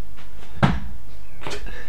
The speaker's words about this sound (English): I'm so angry. I'm going to leave the room and slam the door. I'm going to slam the door so hard.